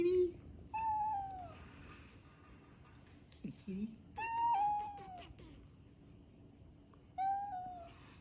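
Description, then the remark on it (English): A female cat meows three times in drawn-out, falling cries spaced a few seconds apart, fairly loud, while people talk quietly in the background. “That's a good kitty. It's okay. Come closer.”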